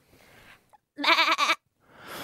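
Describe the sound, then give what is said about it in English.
A person does a goat impression as part of a guessing game. It is one loud, quavering bleat lasting about half a second, with a brief break in the middle, framed by faint breathy noise before and after. “All right, in 3, 2, 1, your goat impression.”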